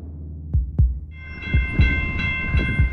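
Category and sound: vehicle, passing train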